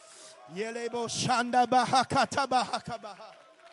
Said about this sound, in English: Come on, can we clap our hands right now and shout unto God?